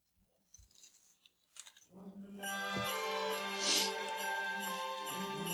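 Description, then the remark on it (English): Scissors snip through paper, cutting out a paper nutsack shape with a few crisp, irregular cuts, followed by a steady humming tone that holds to the end. “Cutting out the nutsack.”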